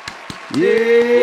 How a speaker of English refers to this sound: All right. Also, second round of applause.